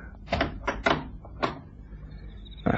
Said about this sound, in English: Open the door to the garden